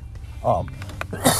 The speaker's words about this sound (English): excuse me. I don't have coronavirus. I do have a little bit of a cough.